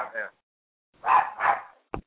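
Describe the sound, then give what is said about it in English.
An excited dog barks three times, a short yap followed by two fuller barks close together, fairly loud, with a faint click at the end. “Yeah, the dog agrees”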